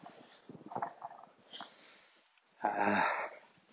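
A dog sniffs and pants in short, breathy puffs, then lets out a louder, wheezy snorting exhale near the end. No one speaks.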